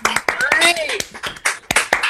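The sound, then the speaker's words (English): Scattered, uneven applause from several people on a video call with everyone unmuted: sharp claps landing out of sync, with overlapping voices calling out underneath, all slightly thin and compressed. “Can we unmute everyone so we can applaud?”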